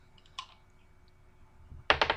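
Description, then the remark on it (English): A single sharp click, then after a pause a rapid burst of hard clattering taps as new physical dice are rolled across a table for a dexterity check, fairly loud with no talking. “Let me whip out my brand new physical dice that I bought.”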